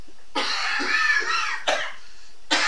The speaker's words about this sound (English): I don't even think that was a real cough this time.